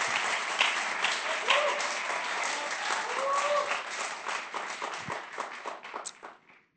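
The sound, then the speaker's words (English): A sustained round of applause from an audience as young people come up to share their stories, dense overlapping claps with a few faint cheers, holding steady before tapering off toward the end. “Let's give them a warm round of applause as these guys come up to share their stories.”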